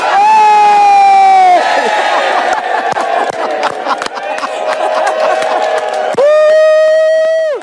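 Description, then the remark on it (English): A crowd erupts in loud cheering and shouting, with scattered claps, right after a countdown from 5 to 1 at a stunt calling for a general election. A sustained horn-like tone blares at the start and returns near the end. “Is Ed David cheering there?”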